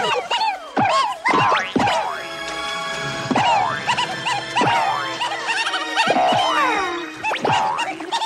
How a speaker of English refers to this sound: Here's sped up Looney Tunes sounds so you can kind of hear them using that library. Here you go.